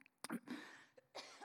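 A couple of short, breathy coughs, fairly soft, with a brief pause between them and no talking.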